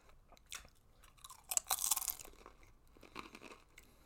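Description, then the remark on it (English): Crunching of a chip, a sharp bright crackle peaking mid-clip, followed by softer wet chewing sounds that fade out; no one talks. “Rate the quality of this crunch of this chip.”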